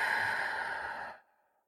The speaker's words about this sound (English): Start breathing in through your nose, holding it all the way down in your belly, and then blowing it out.